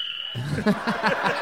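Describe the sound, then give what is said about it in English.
A person imitates a cricket with a rapid run of raspy, rhythmic chirps, fairly loud, after a brief thin whistle-like tone. Nobody talks over it. “How the fuck did you make that cricket noise like that?”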